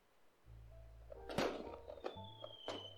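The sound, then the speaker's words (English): A bathroom door, where people are hiding from indoor fireworks, opens with a solid thunk and rattle, followed by two lighter knocks, all over a steady low hum. “Here, let me open up the door here.”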